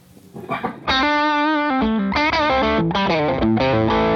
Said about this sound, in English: kind of more of a cleaner overdrive. It really works great with humbuckers. Like, if I've got a 335 on, I'll tend to, like, step on this pedal.